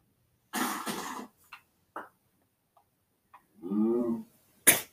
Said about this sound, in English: I just heard that cow is like, moo.